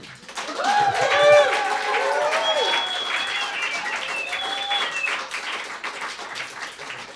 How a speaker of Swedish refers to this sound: För de som inte ser oss och kanske lyssnar i efterhand så är vi i Umeå och har en fantastisk publik. Jag tänkte, kan ni inte bara låta lite? Det finns lite publikmickar här så att ni kommer med på band. Ta en applåd till.